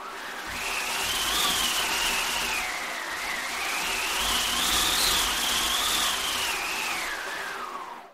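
A steady, broad whooshing roar like howling wind, its whistling pitch rising and falling in slow swells as a wind machine is cranked: a spinning bingo-style drum with canvas stretched over it, part of a three-in-one Space Saver combination machine. It lasts about eight seconds with no talking.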